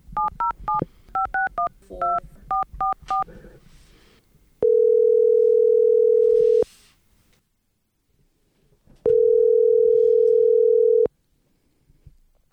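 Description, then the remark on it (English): A follow-up telephone call: a quick burst of touch-tone dialing beeps, then two long, steady ringback tones of about two seconds each, separated by a quiet pause, heard clearly through a phone line. “So I followed up with her on the phone.”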